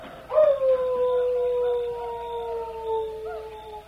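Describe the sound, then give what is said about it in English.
A long, sustained wolf-like howl, a Cheyenne chief answering a wolf call, rises sharply and then holds a steady, slowly falling tone for several seconds, with no talking. “He heard you and answered.”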